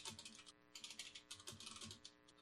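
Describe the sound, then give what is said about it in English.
Rapid clicking of keys on a computer keyboard, typed in quick bursts with a short pause, fairly clear with a faint steady hum underneath. “I can't type on this. There's same. Also another keyboard if you want it.”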